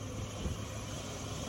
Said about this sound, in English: Do you want to see the planting going by with the brand new planter? There's the tractor, and he's pulling behind it the planter. It's got the seeds in it.